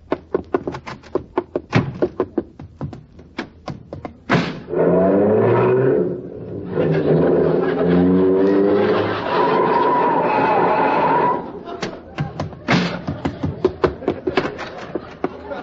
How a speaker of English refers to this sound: I thought I'd never get here. Hey, how come you drove your car over here? You only live next door.